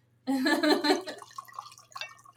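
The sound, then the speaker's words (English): Wine is poured from a bottle into a glass, a burst of resonant gurgling glugs that tapers off into softer, scattered trickles and drips. “Pour a little for our guests too. Glug glug glug glug glug.”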